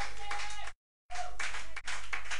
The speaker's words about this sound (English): Hallelujah. If you've decided to clap, just clap hands. As an overcomer.